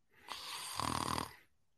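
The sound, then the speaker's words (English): A person mimics a snore with their voice: one drawn-out, rattling inhale that builds into a buzzing, fluttering vibration, then fades. It is fairly loud, with no other sounds. “I am going to make the noise of snoring.”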